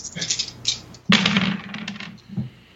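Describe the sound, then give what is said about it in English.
Four dice clatter and rattle across a tabletop, a sudden burst of sharp clicks that tumbles on for over a second before settling, fairly loud with no talking. “So that's four dice.”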